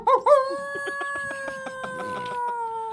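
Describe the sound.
A person imitates a wolf howl: a couple of short yelps, then one long, steady, mid-pitched vocal howl held for a few seconds, sliding slightly down, with faint rhythmic tapping underneath.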